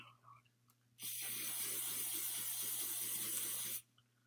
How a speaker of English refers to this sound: but okay, now just spray it with hairspray.